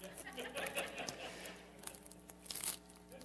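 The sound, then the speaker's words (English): A Nestle Crunch candy bar wrapper is torn open and crinkled, a quiet run of crisp rustling and crackling bursts, with a sharper rip toward the end. “Have you ever had one of these frozen?”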